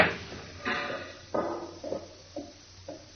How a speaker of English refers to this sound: And if I rip the steel back a little, just enough to reach the clock, like this, there, and then set the clock at 2 hours like this, door should open. Good, it's open.